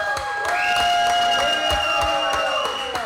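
An audience claps and cheers, with sharp, irregular handclaps over a steady wash of crowd noise and high, sustained whoops or whistles running throughout.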